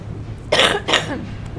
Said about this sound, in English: And, excuse me, I've got to cough. Excuse me.